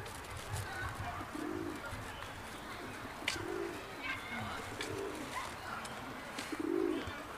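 Pigeons coo in low, throaty, repeated phrases that rise and fall in soft bursts, over a steady murmur of background noise with a few brief clicks; it is two pigeons, one puffed up and cooing as it tries to mate with the other.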